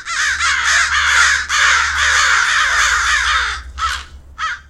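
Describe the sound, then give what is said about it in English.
A dense chorus of many American crows cawing at once at a night roost in street trees, harsh overlapping calls filling the air continuously, then thinning to a few separate caws at the end, with a low hum underneath. “In November, American crows congregate in vast, eerie numbers to roost all across their range.”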